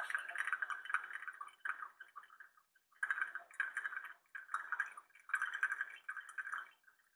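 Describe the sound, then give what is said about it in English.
Coffee drips and gurgles into a cup in quick, bubbly bursts, pausing briefly before starting again; fairly quiet, with no voices. “Coffee dripping into a cup.”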